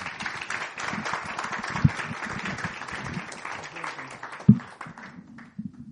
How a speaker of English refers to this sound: So why don't we give him a round of applause